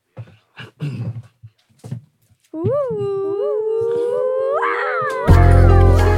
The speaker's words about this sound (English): Holy shit. Do y'all hear this? Are y'all hearing this? Dog.